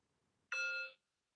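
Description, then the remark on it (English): A single meditation timer bell strikes suddenly, ringing with a bright, layered metallic tone for about half a second before cutting off abruptly into silence. No one speaks. “And here's the bell.”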